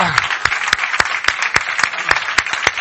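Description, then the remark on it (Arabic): A church audience claps for the Lord Jesus, a dense wash of many hands with sharp, steady beats landing in a fast, even rhythm, loud and sustained throughout with no voices standing out. “فينا نعطي زقفة للرب يسوع.”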